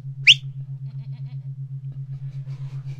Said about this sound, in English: Goats. Goats and dogs, dogs and goats. My goodness.